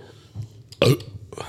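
A single loud, close burp erupts abruptly, short and throaty, with quieter breathy mouth noises before and after it.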